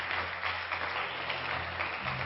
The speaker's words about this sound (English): It's good to have our guests that are here. Why don't all of our home folks give our guests a good hand clap today?